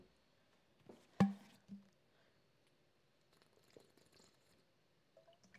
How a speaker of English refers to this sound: Let me get a sip of water.